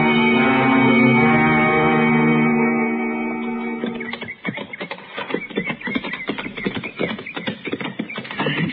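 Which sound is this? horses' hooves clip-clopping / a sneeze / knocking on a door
horses' hooves clip-clopping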